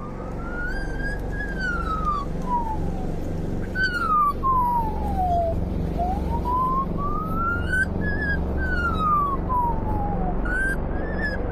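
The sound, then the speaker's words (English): An Australian magpie mimics a fire siren, a loud wailing tone that rises and falls in long, steady sweeps over a low, constant rumble, with no one talking. “Hearing isn't a fire siren. It's a real recording of an Australian magpie's chirp.”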